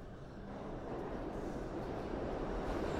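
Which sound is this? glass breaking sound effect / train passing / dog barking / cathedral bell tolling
train passing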